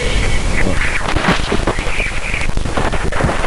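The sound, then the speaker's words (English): A radio recording of Jupiter's largest moon, Ganymede: loud, steady static hiss full of rapid crackles and pops, with faint wavering whistle-like tones drifting through it, and no voices. “I'm going to play, this is Jupiter's largest moon, Ganymede.”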